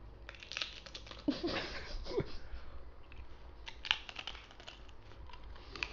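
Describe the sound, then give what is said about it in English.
Crisp, crackly crunching of a chip, performed as ASMR right up against the mic, a run of sharp snapping bursts with brief pauses between bites, fairly quiet overall and with no talking. “I will now be performing some ASMR. That's going to be so close to the mic. Give me a chip. I'm going to crunch.”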